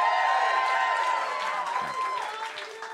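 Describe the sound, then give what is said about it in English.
A live audience at an on-stage contest cheers and whoops loudly on request, a dense wash of many voices with some applause mixed in, sustained for a few seconds before easing slightly. “I'm the only judge, and when you agree with my judgment, I would like for you to cheer. Give that a shot right now.”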